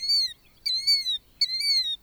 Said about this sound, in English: Several bird names are onomatopoeic, a fancy way of saying we gave the bird its English name from the sound the bird makes. Killdeers seem to be saying killdeer.